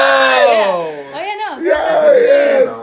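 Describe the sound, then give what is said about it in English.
A single voice lets out a loud, sustained hardcore-style scream, raw and strained, bending up and down in pitch for a few seconds with a brief dip midway. “No, I was screaming.”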